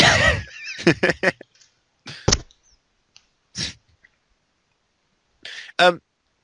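human body sound, violent coughing

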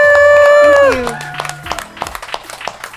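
crowd, audience applause

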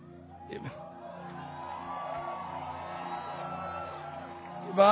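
crowd, audience clapping and cheering

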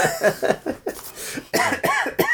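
human body sound, coughing fit

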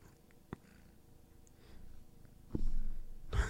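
animal, cat purring

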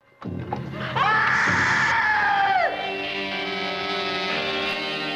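sound effect, screaming

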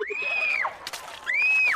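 human body sound, girl screaming

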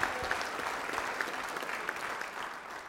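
crowd, audience round of applause

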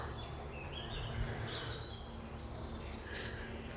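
bird, birdsong

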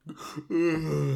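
human body sound, yawning

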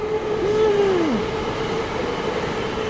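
vehicle, train passing by

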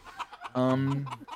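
sound effect, chicken clucking sound effect

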